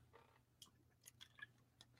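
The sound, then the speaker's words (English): Someone takes a sip of water: a few soft, wet mouth clicks and swallowing sounds spaced irregularly, ending in one sharper, louder click, with no talking. “I just got to get a drink of water.”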